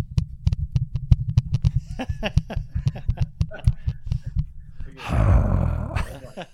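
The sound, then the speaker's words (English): A person does a barking-dog impression of another person, making a quick series of rhythmic, gruff vocal pulses that build into a louder, rough growling snarl near the end. “Bark, bark, bark, bark, bark.”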